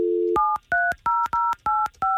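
A brief dial tone gives way to six quick touch-tone keypad beeps, evenly spaced and clear, each with a small click, as a phone number is dialed with no one talking.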